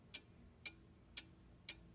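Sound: clock ticking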